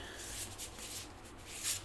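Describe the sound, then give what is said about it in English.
Soft, papery riffling and rustling of a deck of cards being shuffled, a quick series of light brushing bursts, fairly quiet, with no talking. “So, got these all shuffled.”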